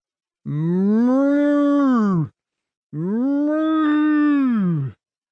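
Two long, drawn-out cow moos, loud, separated by a brief pause. Each call swells and then trails off, with no talking around them.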